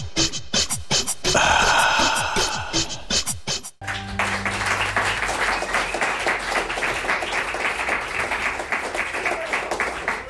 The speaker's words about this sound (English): Always nice to have a round of applause to welcome my next guests to the studio.